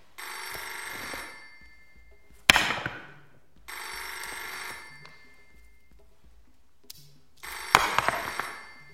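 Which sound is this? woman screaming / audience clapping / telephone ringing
telephone ringing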